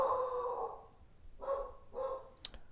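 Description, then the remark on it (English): Dogs barking a few times, with a longer bark first, then two shorter ones and a sharp yip, heard alone. “I have no idea what our dogs are doing. I bet it's the Amazon order.”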